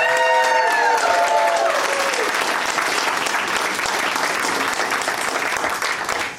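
Steady, loud applause from a game show audience for a contestant, with a few cheers mixed in at the start, sustained for several seconds before tapering off at the end.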